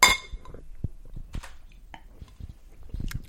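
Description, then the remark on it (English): A bright glass clink rings out at the start, followed by scattered soft knocks and taps of glassware being handled and set down while a Whiskey Moon cocktail made with beer is mixed in a double rocks glass. “Well, it said to put it in a double rocks glass or whatever.”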